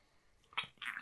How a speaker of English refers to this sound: Oops, some Diet Coke there. Quick slurp.